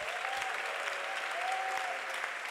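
A steady wash of audience applause, many hands clapping densely and continuously at an even level throughout, with a faint tonal whistle or voice drifting above the clapping.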